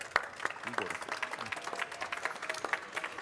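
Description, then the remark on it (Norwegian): An audience claps steadily for a few seconds as panelists are called up, a dense, even patter of many hands at moderate loudness, with a faint voice briefly audible beneath it. “Gi de alle sammen en riktig god applaus.”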